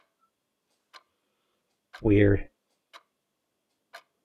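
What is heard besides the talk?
wall clock ticking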